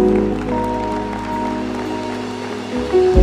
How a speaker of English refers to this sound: Let's give the Lord a hand clap right now.